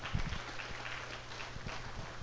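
An audience claps together, a dense, even patter of many hands that holds steady for a couple of seconds, fairly subdued, with a low hum underneath and no voices.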